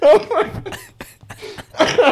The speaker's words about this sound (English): Oh my. I have a smoker's cough going.